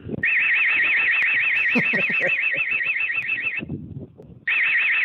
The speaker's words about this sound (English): Well, he put an alarm on it, right? Okay. Let's see this. Here we go. With original alarm audio.